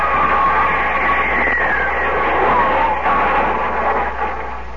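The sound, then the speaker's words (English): A loud, steady roaring whoosh with a descending whistling tone sweeping downward as a meteor streaks overhead through the air, gradually easing off toward the end. “Look at that one. It's coming right at us.”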